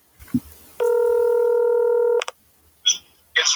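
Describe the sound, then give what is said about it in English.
Touch-tone dialing on a phone to call a person's second phone number: a loud, steady electronic tone holds for over a second, then a few short, bright beeps follow in quick succession. “Listen, this is not good. I'm calling his other number.”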